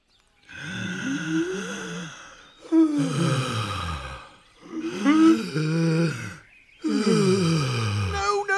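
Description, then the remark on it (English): Exaggerated, voiced in-and-out breaths, loud, come in four long heaves separated by brief pauses, each sounding like a drawn-out sigh or groan. “Breathing, you mean?”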